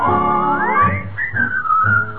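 A clear, bright whistled melody glides upward and then steps through a few sustained notes, carried over a steady instrumental accompaniment with pulsing low tones.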